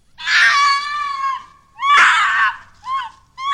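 A shrill, piercing, blood-curdling scream of a creature with a horse- or goat-like head, leathery bat-like wings, horns and cloven hooves rings out loud, followed by a second long wail and a couple of shorter, clipped shrieks, with no talking.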